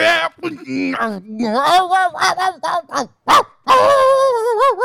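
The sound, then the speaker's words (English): A person's voice imitates a dog, with a string of loud yelps and barking sounds whose pitch slides up and down, broken by short pauses, then a longer warbling howl. “now you turn into a dog.”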